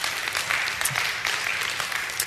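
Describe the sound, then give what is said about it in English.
An audience applauds steadily, a dense, sustained wash of many hands clapping with no pauses, fairly loud and even throughout with no voices standing out. “We could applaud heaven forever, couldn't we?”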